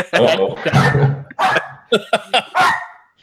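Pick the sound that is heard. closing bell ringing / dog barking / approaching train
dog barking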